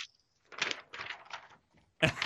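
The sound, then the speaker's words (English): Dry crinkling bursts of paper being handled, several irregular rustles in a row followed by a sharper crackle at the end, with no voices. “I hear the paper rustling.”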